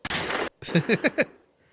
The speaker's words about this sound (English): You ready for the gunshot? The random gunshots?